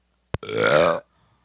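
A single loud burp lasting about half a second, voiced and throaty, starting right after a quick click and ending abruptly into near silence.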